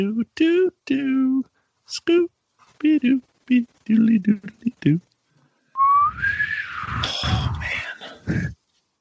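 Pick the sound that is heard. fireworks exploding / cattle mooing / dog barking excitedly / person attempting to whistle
person attempting to whistle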